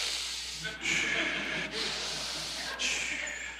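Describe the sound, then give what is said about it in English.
Loud, deliberate breathing in and out: about four airy, hissing breaths in a steady rhythm, each separated by a brief pause, with no talking. “I'm breathing all on my own.”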